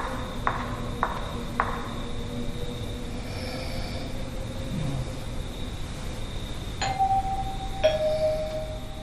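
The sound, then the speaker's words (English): A doorbell in a hotel chimes twice near the end, two bright ringing tones a second apart, after a few soft clicks earlier on, all over a steady low background hum with no talking. “When he's in his hotel, you hear a doorbell, and he checks that.”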